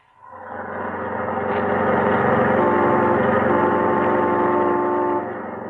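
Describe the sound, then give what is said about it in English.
A car engine hums steadily as the vehicle drives along, a low, rumbling drone that swells slightly in pitch and loudness before settling, with no voices. “I know how to handle a car.”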